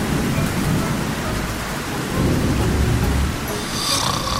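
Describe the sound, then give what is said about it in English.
Steady, heavy rain pours down in a dense continuous hiss, with a deep low rumble beneath it like thunder rolling through the downpour. “It rained and it rained and it rained.”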